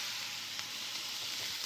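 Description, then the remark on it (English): Brussels sprouts greens sizzle steadily in a hot pan with onions and garlic, stirred until soft, a dense, even hiss of frying with faint crackles and an occasional soft scrape of stirring, with no voices. “We throw the greens into the pan with the onions and the garlic, and I'm just gonna stir them around until they're soft.”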